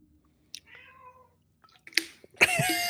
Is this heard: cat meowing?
yes